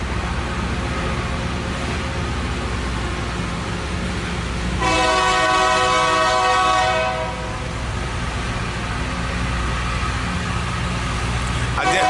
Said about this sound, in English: Got a slow-moving train coming by. I forgot this park is near some train tracks.